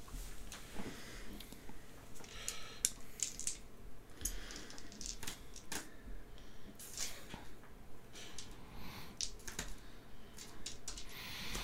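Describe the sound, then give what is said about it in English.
Steady, irregular typing on a computer keyboard as a man types in a login, a stream of quick key clicks with brief pauses between bursts, continuing throughout with no voices. “He taps away for a while.”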